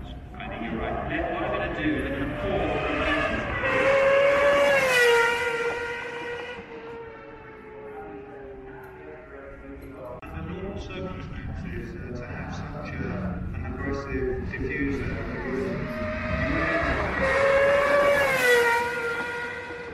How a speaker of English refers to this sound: Unbelievable. Yeah. I'd say it'll be fairly sharp too. It's 650 horsepower from a 4-liter V12, and it actually weighs less than the McLaren F1 did.